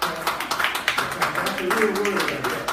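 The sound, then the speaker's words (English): Scattered hand claps ring out in a quick, uneven burst of applause from a small group, with murmuring voices and a bit of cheering mixed underneath. “I want to give you a round of applause.”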